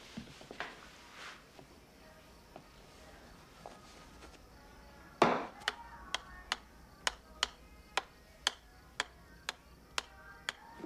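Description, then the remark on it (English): A clock ticks steadily and crisply, starting abruptly after a sharp thump halfway through and continuing as evenly spaced ticks; the first half is quiet, with only faint, indistinct rustling. “Clock's ticking, fellas.”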